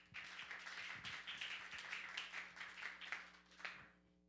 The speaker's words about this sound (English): So would you please give Joe a round of applause?